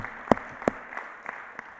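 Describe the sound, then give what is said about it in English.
Scattered applause from a church audience applauding itself: a few separate claps, two sharp and louder, then three softer ones spread out irregularly, with no talking. “You should give yourself a round of applause.”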